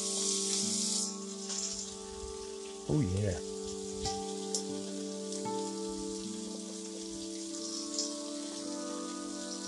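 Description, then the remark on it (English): Chicken sizzles in hot oil in a pan on an electric stove with a steady, bright crackle and spatter that runs throughout, over a low constant hum, while a voice briefly speaks near the start. “Now we're going to throw our chicken in the pan.”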